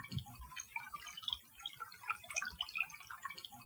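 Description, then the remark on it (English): Love Creek ripples and babbles steadily after rain, with small bright trickles and drips scattered through a soft, continuous wash of flowing water. It is fairly quiet and there is no talking. “We're on Love Creek, and it's been raining, and you might be able to hear the creek ripple. The babbling brook.”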